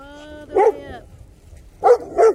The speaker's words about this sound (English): And then you have the dogs. They're excited because there's other dogs here.